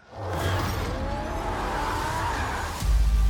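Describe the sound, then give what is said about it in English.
Roaring car engines and a sustained tire squeal from skidding, loud and continuous for several seconds, with a heavy rumble that surges near the end. No one speaks. “There you go, Death Race. What? That's cars?”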